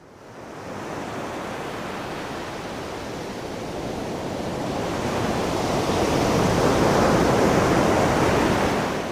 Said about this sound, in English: The sea waves assaulted the beach noisily, as if it was echoing the rage in Malavika's heart.